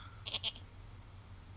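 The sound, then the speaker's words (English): A person's voice imitates a goat, giving a short, quavering bleat in two quick pulses. It is fairly clear against a low background hum, and a brief thump follows at the end. “Yeah, well, these are dwarvish goats.”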